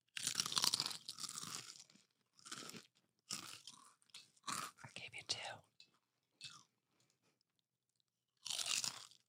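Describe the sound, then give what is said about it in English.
Loud crunching of thick fried pork skin, several bursts of brittle crackling bites separated by pauses, with quieter chewing and a few faint murmured sounds between them. “But is that really pig skin? Yeah. Thick. So thick. I love some thick. Crunchy skin.”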